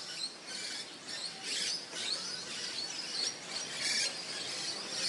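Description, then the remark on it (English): A dense, noisy chorus of many birds chirping and squeaking all at once, set against a steady hiss of rain in Sydney, continuous with no voices. “Wow, you can hear all the birds going nuts.”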